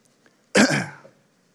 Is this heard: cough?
yes